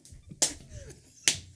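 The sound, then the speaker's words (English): Two sharp, loud slaps of hands against bare legs by people wearing shorts, spaced nearly a second apart, with a faint low background murmur between them. “They're slapping their legs.”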